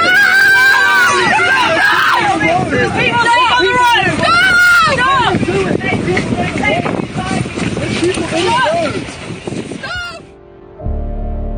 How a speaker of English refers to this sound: What are we listening to there? Apart from the sadly unavoidable roar of the wind, that was the sound of activists from Just Stop Oil being very nearly run over by a coach they are standing, and at one point, sitting in front of.